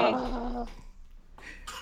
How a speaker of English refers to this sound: Did you hear that, by the way? That was a baby cough in the background.